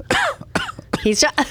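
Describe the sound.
A quick series of four short, dry coughs, fairly loud, each a harsh voiced burst separated by brief pauses; a lingering dry cough left over from an illness.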